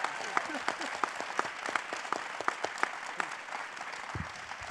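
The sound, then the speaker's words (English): A crowd at a C-Suite for Christ event applauds steadily for the distinguished panelists, many hands clapping in a dense, even patter with a few sharper individual claps standing out, sustained at moderate loudness throughout. “Let's give them a round of applause, huh?”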